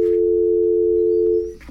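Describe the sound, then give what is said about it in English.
A loud, steady telephone dial tone hums continuously for about a second and a half after a phone interview call drops, then cuts away, leaving a brief rustle of faint background noise. “Well, these things happen, when you're on the phone.”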